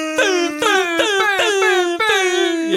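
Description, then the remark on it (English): An air horn sound effect blares in about six rapid, loud, brassy bursts, each blast sagging slightly in pitch before the next one hits, with no talking. “And every time you purchase, come to the free air horn sound.”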